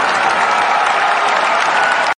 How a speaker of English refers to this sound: I do want to give him a round of applause. He had one hell of a career, so let's definitely give him a round of applause.